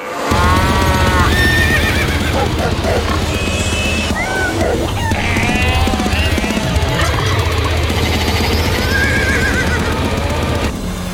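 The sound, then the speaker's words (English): The Stable of Filth theme music, a comedic tune built around repeated horse neighs and whinnies, their wavering high calls rising and falling over a steady, droning low backing for about eleven seconds, loud throughout. “They've also sent me the theme music as well, which is very exciting.”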